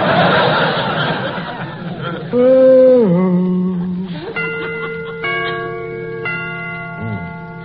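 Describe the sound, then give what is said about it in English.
A clock chimes several times in a slow sequence, each strike ringing and overlapping the last. Before the chimes, there is a burst of noisy, laugh-like sound and a sliding tone. “Get them chimes made softer. No sense in letting the neighbors hear the time for nothing.”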